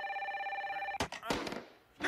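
A telephone bell trills rapidly for about a second, a bright, steady electronic ring, then cuts off abruptly into a few loud thumps and bursts of clattering noise.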